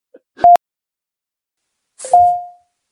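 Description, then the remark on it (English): An email notification alert sounds twice: a brief, sharp electronic beep, then after a pause a longer mid-pitched tone that rings out and fades. No one speaks. “What was that? Did we get an email?”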